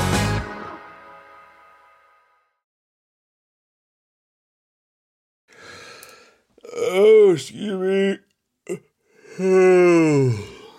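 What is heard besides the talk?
yawn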